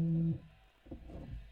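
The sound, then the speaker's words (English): A single low, steady buzzer tone with a harsh, humming edge sounds for about a third of a second, then cuts off abruptly, leaving faint muffled background noise. “Okay, that's the buzzer.”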